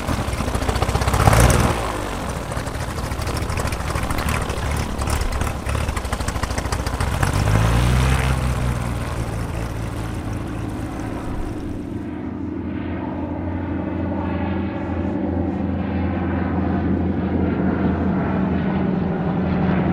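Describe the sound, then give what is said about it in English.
A small propeller airplane drones loudly overhead, banking for one more pass over the United States–Mexico border before returning to the airfield, its engine pitch sweeping as it passes, then settling into a steadier, more muffled hum as it continues on. “Frank banked his plane to make one more pass over the border before returning to the airfield.”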